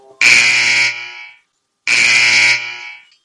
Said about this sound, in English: Let's do the buzzers.